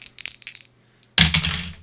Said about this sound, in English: you're going to roll some dice. So why don't you pull up your mic and get those dice nice and close, and let's hear this winning roll and see who wins this beautiful Stomp Dungeon Masters Block t-shirt.